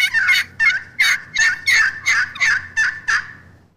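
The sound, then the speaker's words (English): A series of about eight raspy turkey yelps scraped on a pot call from the edge toward the center, high to low, evenly spaced and steady, each note sharp and loud before the last few trail off slightly. “That's my four-step program for, I guess, using a pot call more efficiently.”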